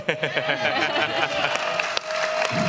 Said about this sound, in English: I hope he hears the clapping.